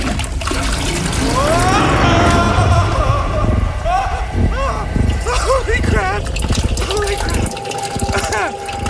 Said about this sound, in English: I have to figure out how me and my toilet got here so we can get home. My toilet. The pre-courtesy flush.